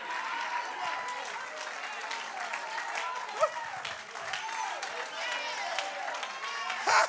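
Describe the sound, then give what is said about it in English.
An audience claps their hands unto the Lord in a dense, steady patter for several seconds, with many voices calling out and cheering beneath and a couple of louder shouts rising above the crowd. “Clap your hands unto the Lord and magnify the name of Jesus.”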